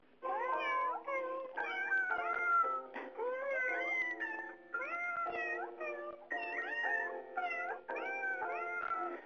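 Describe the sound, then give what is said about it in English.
A chorus of cat meows from a YouTube video, strung together into the Happy Birthday tune. Each note is a pitched mew, with phrases following one another loudly and continuously with brief gaps and no talking. “What could be more appropriate for Tech Law 10 than YouTube cats singing happy birthday to you”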